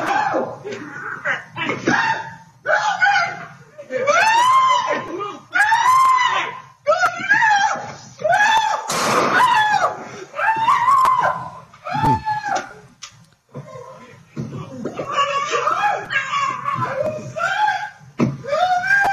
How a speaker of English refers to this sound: So he's still screaming after him. He's still trying to protect the dogs, even though he has been shot.